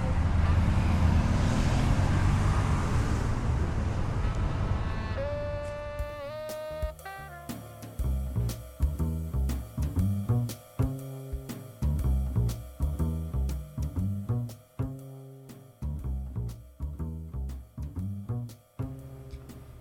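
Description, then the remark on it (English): A steady roar of city street traffic at the intersection of Third and Harrison in San Francisco, recorded on October 31, 2006, fills the first few seconds with a broad rumble, then fades out as rhythmic music with pulsing beats takes over. “Third and Harrison, San Francisco, 2006.”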